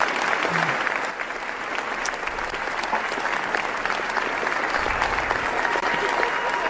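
Thunderous, sustained applause from a large crowd, dense and steady from start to finish, with countless overlapping claps forming a continuous roar and no pauses.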